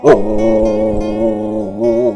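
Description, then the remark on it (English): A dog named Maxwell in East Nashville, Tennessee, lets out one long, drawn-out vocal call as a goodbye, a steady, tonal howl that wavers slightly in pitch and holds loud for about two seconds, with no talking. “here with my dog, Maxwell. Say goodbye, Maxwell.”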